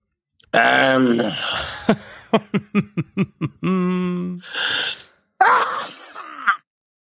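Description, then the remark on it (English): A donkey makes loud, harmonic groaning brays and a quick run of rhythmic huffing pulses, then lets out two harsh, noisy sneeze-like snorts separated by a short pause. “There's two sneezes from the donkey.”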